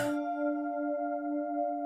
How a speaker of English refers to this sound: I hear the bells for Vespers.